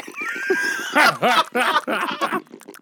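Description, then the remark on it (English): A person vocally imitates a guinea pig, making a quick series of high, squeaky, wheeking chirps, loud and rapid, without any speech. “Wait, do the gerbil real quick. The guinea pig. Guinea pig.”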